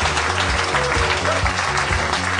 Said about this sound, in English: Nobody go anywhere. Keep clapping. It's fun.